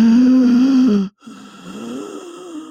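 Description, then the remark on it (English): A recording of a person breathing heavily and laboriously, played in a darkened boardroom to senior management to simulate having asthma: two long, raspy, snore-like breaths with a brief pause between them, loud, with no talking. “I played the sound of a person with heavy breathing like this.”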